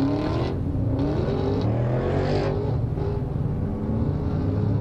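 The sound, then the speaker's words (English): A car engine revs and accelerates, its steady roar rising in pitch with road noise all around and no talking, as the car races other cars on the I-4 highway. “stop racing them.”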